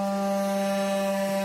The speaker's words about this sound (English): That's the water pipe you hear humming in the background. Listen to this. So that humming's the pipe. Now listen to him adjust the water.